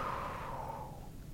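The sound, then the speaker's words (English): A single slow, deep breath drawn in audibly, a soft airy rush that gradually fades, with no talking. “And now I want you to take a slow, deep breath in.”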